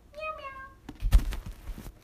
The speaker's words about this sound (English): Tabby is the tabby cat, and she is cool. You ever tried to make cats meow?